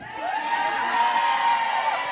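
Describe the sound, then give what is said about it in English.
A live show audience at Caroline's in New York City cheers and shouts together, a dense, steady roar of many voices with high whoops and squeals riding on top, holding loud for the whole two seconds. “And also, let's give a big hey, girl, hey to all the suckers who are listening to this and aren't here right now.”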